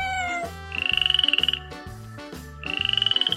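A frog chorus: two bursts of rapid, rattling croaks with a high trilling tone, over steady lower rhythmic calls. Fairly loud, with no talking.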